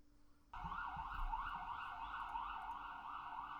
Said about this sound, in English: It gets real loud here when the sirens start coming around. I don't, it's not much I can do about it, unfortunately.